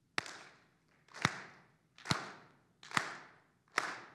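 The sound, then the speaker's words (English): A church audience claps together in unison along with the speaker, five loud sharp beats at a steady, slightly slow rhythm, each clap ringing out briefly before the next, with no talking. “Now, as we're clapping, look around.”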